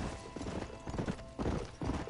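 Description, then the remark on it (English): A horse's hooves clip-clop in a steady walking rhythm in a video game, several clear thuds over a continuous low rumble of background noise. “It gets you familiar with the horse, which is a major point of the game, is being able to get from place to place.”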